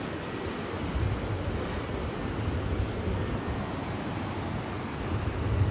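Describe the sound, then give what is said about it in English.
Steady roar of ocean surf washing onto a beach, a dense hiss with gentle swells in loudness as waves break, heard alone without any voices. “Through the waves, surfing on a beautiful white horse topped wave, enjoying yourself.”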